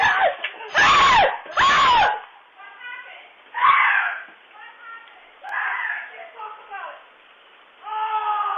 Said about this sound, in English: He went outside to grab a package and he saw a little mouse. And he starts screaming like a six-year-old girl. He was hopping all over the place. It was on the Ring camera.